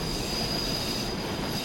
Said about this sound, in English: So to go to neutral, you hit A a couple times. You'll hear the engine stop powering up.